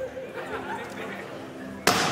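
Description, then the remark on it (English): Murmured crowd chatter, then a single loud, sharp smack as a metal ball thrown by Franz hits the rear window of the Cybertruck on stage at its unveiling, cracking the glass, its harsh crackling tail lingering to the end. “He then threw it at the rear window, and they also cracked.”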